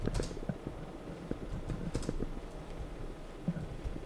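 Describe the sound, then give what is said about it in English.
Rapid, uneven clicking of keys on a computer keyboard, moderately loud, with a few sharper taps standing out from the steady clatter; no voices. “I feel like typing.”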